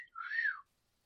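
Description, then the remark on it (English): Someone whistles a single short note that swoops up and then falls away, a clear whistled imitation of a train whistle that ends up sounding more like a catcall. “Like, I was trying to go for, like, a train, but then I went for, like, a cat call.”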